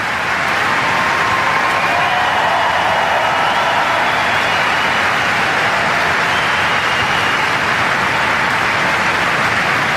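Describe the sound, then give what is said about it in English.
Long, unbroken standing ovation from a large crowd on Centre Court at Wimbledon for the leaders who developed the COVID vaccines, a dense, steady roar of clapping that stays loud and even from start to finish with no voices standing out. “And then the round of applause does not end.”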